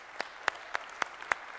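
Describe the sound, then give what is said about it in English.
A church audience claps in a slow, steady rhythm: six crisp, evenly spaced claps, fairly quiet, with no voices over them, applauding people deciding to start in-depth Bible study in the church building. “If right now you're deciding to start Bible study on April the 11th in depth in this church building, can we applaud the folks who are making that decision?”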